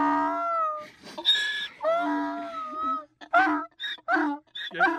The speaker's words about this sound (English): It's a crying donkey. Right?